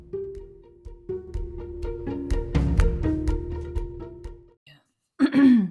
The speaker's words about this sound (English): Oh, good morning. It's always going to be a great podcast when I start with clearing my throat on air. You know, that's how you can tell you are listening to the real deal.